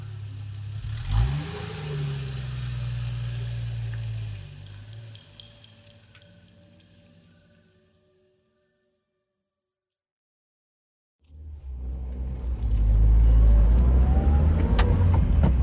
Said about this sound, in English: All of the friends get into the SUV and drive off. The rest of the party crowd follows.